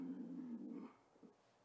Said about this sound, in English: A snorting, farting dog.